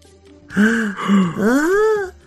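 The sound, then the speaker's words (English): A single voice imitates an awed crowd below gasping, with three drawn-out, wavering 'ooh' and 'aah' sounds that swell and glide in pitch, fairly loud, with no other words spoken. “And there was a gasp from everyone below.”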